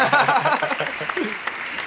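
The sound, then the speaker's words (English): An applause sound effect: a brief burst of crowd applause, dense clapping blended with some cheering voices, steady at first and easing off slightly over about two seconds. “Hold that applause with the L.”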